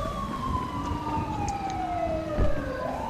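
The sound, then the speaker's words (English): A fire EMS ambulance siren sounds loud as it comes up quickly, one long wailing tone sliding slowly downward over a low rumble of road noise, with no one talking. “We gotta go let EMS know to stay relatively clear. They're coming up quick.”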